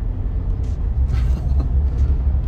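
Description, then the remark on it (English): A car brakes to a hard stop, heard from inside as a steady, loud low engine and road rumble with a brief rougher surge partway through. No one speaks. “A little bit harder stop than we were thinking of.”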